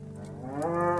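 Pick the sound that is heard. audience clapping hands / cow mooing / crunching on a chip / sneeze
cow mooing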